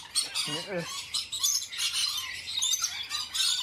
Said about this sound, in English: Great bird noises, totally not annoying.